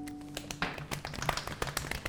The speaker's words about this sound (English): Everyone quietly applauds.